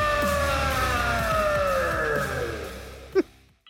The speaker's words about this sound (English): I'm doing great, minus the alarm that's sounding behind me. How are you guys? What's going on? They hit the panic button? Oh, no. I think we all did. There's an alarm coming out of the Jumbotron